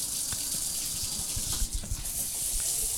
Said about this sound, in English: Just as I suspected. Water. Coming out of the faucet? Your shower has water coming out of it.